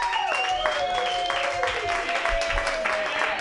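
A crowd applauds steadily in a dense, even wash of clapping, with a few sustained tones sounding over the top, and no voices speaking.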